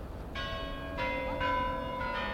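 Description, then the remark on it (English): The Kremlin's large tower bells in Moscow strike noon, sounding four times in steady succession, each deep, ringing tone overlapping the last as it rings on, heard at moderate volume over a low background hum. “4 days after the Soviet invasion of Czechoslovakia, as the Kremlin's bells struck noon, Litvinov and seven of his friends went to Red Square, the historic plaza in the center of Moscow.”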